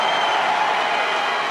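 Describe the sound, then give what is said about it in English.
A large crowd at a Trump political rally roars and cheers in one loud, continuous wash of voices, steady and dense throughout with no single voice standing out. “Listen to the roar.”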